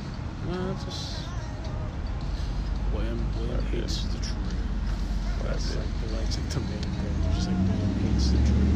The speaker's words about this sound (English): Can't hear. I literally cannot hear you. It might have been the cars. It might have been the cars at time.